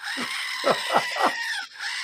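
A squeezed Screaming Goat toy lets out four shrill, falling bleats in quick succession, fairly loud over a steady background hiss, with no one talking.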